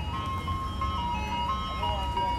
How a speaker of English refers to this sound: A reader sends a thumbs down to the person who approved the ice cream truck that frequents Libby Park with a high-polluting engine and makes too much noise.